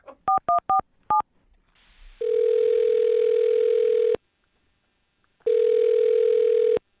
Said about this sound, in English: I'm going to dial her phone number. Dial her up.